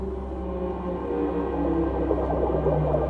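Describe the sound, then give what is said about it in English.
A deep, drawn-out blue whale call to other whales moans steadily underwater, with layered tones humming over a heavy low rumble that swells slightly louder toward the end. “When they sing or whistle or call to each other underwater, it is as loud as a jet engine in an aeroplane.”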